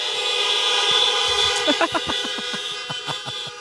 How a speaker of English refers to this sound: Everybody, why don't we give a big honk for Happy Mother's Day? Try that, ready, go.